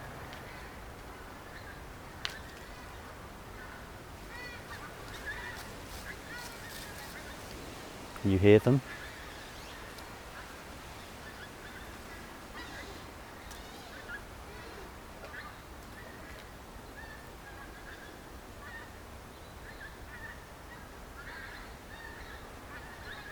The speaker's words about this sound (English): you might be able to hear the geese honking now, the first arrivals. Listen.